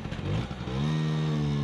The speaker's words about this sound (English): Two boys in a blue healer, an Italian-made scooters, one with a sidecar carrying a miniature blue healer, zooming down a two-lane back road in rural New Jersey at night.